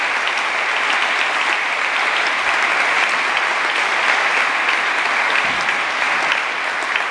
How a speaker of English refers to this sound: Another round of applause, ladies and gentlemen.